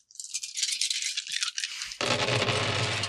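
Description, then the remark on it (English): Many dice rattle continuously in a bright, crisp clatter for about two seconds as they are rolled for a piloting check in a roll-off, then the sound turns fuller and heavier, a dense rumbling jumble of dice tumbling together. No one speaks. “So I have a lot of dice here.”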